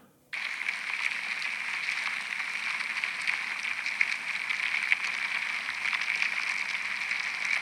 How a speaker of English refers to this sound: How did you know that was an ant?